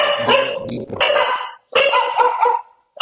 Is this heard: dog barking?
yes